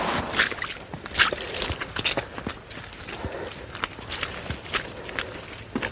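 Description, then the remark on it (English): Squelchy footsteps tramp through woodland mud along a bendy path, a steady irregular run of wet, sucking steps, with no one talking. “Oh, that's squelchy.”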